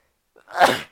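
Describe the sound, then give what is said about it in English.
A single sharp, fairly loud sneeze, with a brief intake of breath just before the explosive burst, which then trails off quickly into silence. “I've got to sneeze.”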